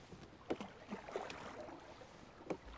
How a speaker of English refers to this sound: And actually, when you look out there at the end of an oar, you can see that it's moving the water backwards. The boat goes forwards.